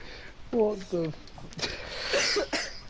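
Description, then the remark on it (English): A person coughs repeatedly, a short fit of harsh, raspy bursts in quick succession, preceded by a couple of strained voiced throat sounds. “Yeah, it's just, it's made your brain think that you have a cough.”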